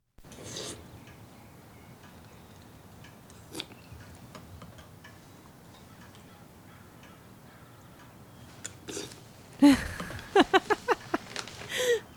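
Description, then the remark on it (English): Loud slurping of a drink: a long noisy suck followed by a quick series of five or six wet, sputtering pulls, coming after a long stretch of near-quiet with scattered faint clicks. “You think you can slurp that a little louder? I don't think they can hear you up in Boulder.”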